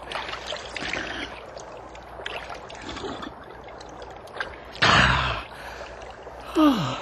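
Water trickles and splashes softly as someone drinks, then a short burst of gulping is followed by a clear, breathy gasp of relief near the end.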